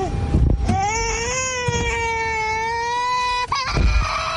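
A baby boy in a car seat wails in one long, loud, drawn-out cry lasting about three seconds, upset at the sight of his mother after her chemical peel, with short fussy sounds before and after over a low rumbling background.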